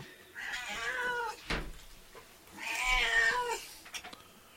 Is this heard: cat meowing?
yes